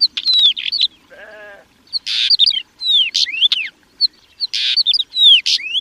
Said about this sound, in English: actually, they're making their sounds through two larynx-like organs and can control those independently from each other. So a bird can make two independent sounds at the same time, and they do. And that just adds to the richness of their repertoire.